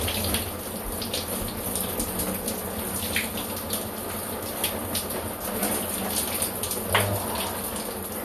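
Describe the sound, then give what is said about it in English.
Water from a shower runs in a steady, continuous hiss and patter, even in loudness, with small splashy fluctuations throughout and no voices. “While I'm in the shower while all the kids are”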